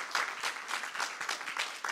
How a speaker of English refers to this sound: So how about break it a little bit and give yourselves a round of applause, because you've made a difference. You really have.